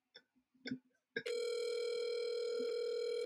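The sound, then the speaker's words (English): After a few short clicks and faint murmurs, a loud, steady telephone ringing tone starts and holds without a break for about two seconds, heard alone. “Can you hear it ringing?”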